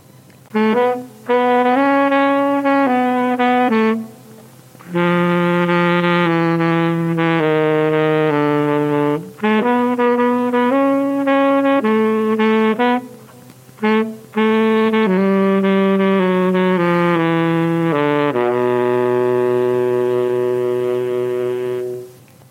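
Mystery-solving background music: a loud, reedy instrumental melody of sustained, harmonically rich notes in several phrases separated by brief pauses, ending on a long held tone, with no talking.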